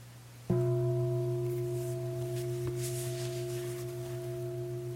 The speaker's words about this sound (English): I'm a big bell, I'm a beautiful bell, I get to sit right up front the whole time. You know, I really got a deep sound. Right? You know, just see what it's like to identify with the bell. And then notice what it happens when I do this.